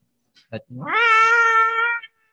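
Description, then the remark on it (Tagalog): A person imitates the angry meow of Bulan, a black pet cat: one loud, drawn-out meow that rises and then holds as a strained yowl, with a couple of short clicks just before. “Yung third time na kumakabog, si Bulan, isa sa mga cats ko, like tipong yung meow niya.”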